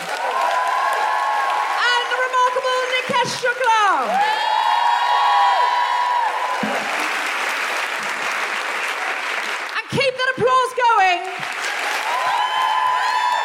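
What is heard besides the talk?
audience applause and cheering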